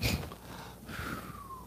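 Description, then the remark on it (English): Two quick nasal sniffs followed by a longer breathy exhale that trails off with a faint falling whistle-like tone, soft and alone without any talking. “Two sniffs and an exhale.”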